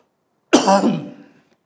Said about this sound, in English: I'm about to cough again, I'm sorry.